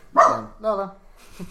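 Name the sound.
dog barking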